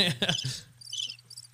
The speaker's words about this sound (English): That's not a great cricket sound. Yeah. I mean, it sounds kind of like it. I could get a better one for my backyard.